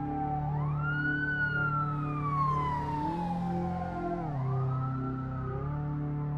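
vehicle, ambulance siren

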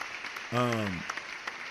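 crowd, audience hand clapping

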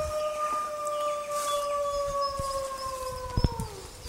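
sound effect, wolf howl sound effect

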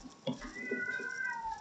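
animal, cat in heat meowing

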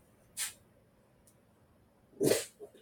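animal, dog sneezing

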